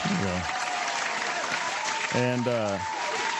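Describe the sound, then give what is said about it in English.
A steady round of applause, dense, continuous clapping filling the few seconds, with a couple of short vocal whoops or calls rising over the clapping. “I'm gonna give it a round of applause for that.”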